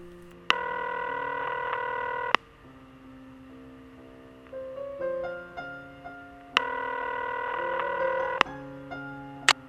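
A telephone rings in two long, electronic harmonic bursts, separated by a quick run of stepped dialing tones. Clear, with no voices.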